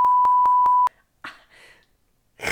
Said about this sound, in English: You need to keep that. Just go beep.